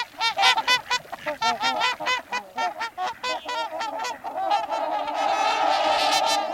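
A flock of swans calling in a steady chorus of honking, bugling notes, rapid and overlapping, growing into a dense continuous clamor toward the end. No voices.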